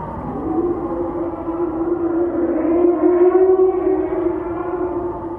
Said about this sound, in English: Though it's not that playful mental tug or that mental red laser drawing me to it. It's a fucking ghost howl.